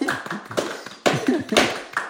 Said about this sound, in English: Let's clap for that. Yeah. Let's clap for that.